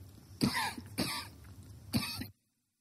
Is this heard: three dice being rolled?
no